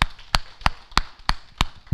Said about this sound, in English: Okay, I'll clap for myself.